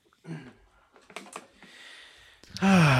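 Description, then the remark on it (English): A short burst of soft keystrokes on a quiet computer keyboard, a few quiet, uneven taps, ending with a louder voiced sound cutting in at the end. “Let me get my quiet keyboard.”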